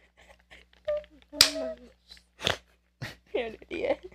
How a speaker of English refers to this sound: I want to literally slap my hand to my face just for that.